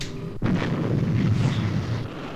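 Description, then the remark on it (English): A spacecraft weapon fires with a sudden sharp crack, then a loud, deep roaring rumble that holds steady for about two seconds, heavy in the low end, with no voices. “Interlock on, then. Fire one.”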